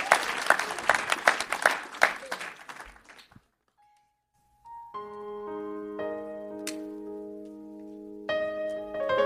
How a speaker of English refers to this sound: Come on, give him a hand clap of praise.